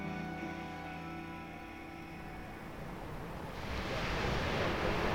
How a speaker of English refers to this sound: Actually standing here, we can hear the sea down below, and the sea is blue and stretching away forever on our right. We've just stopped at the edge of a cliff, looking down onto the beach and the waves coming up.